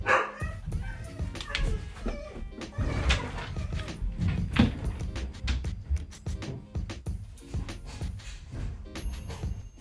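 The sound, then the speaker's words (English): A dog barks repeatedly in sharp, irregular bursts, fairly loud, with some yips mixed in and a bit of background clatter. “Sorry for that interruption. Had a little dog issue to deal with.”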